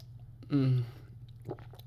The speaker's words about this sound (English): Oh, hang on. Time for a water break. I've been going for like 32 minutes and not a single water break.